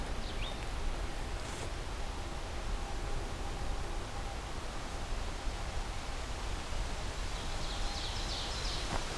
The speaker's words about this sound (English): a distant oven bird.